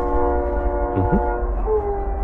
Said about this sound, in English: There's just the whistle. Speaking of whistles. The train. Yeah, I think it's coming in. Can you hear it?